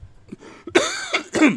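A rough cough in three quick bursts within a second and a half, the first the loudest, with a soft throaty breath before it and no talking.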